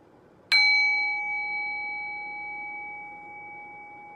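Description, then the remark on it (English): A meditation bell is struck once, giving a clear, bright chime whose pure ringing tone lingers and slowly fades over several seconds amid quiet. “I'm going to ring the bell and I'll guide us into silence and we'll go from there.”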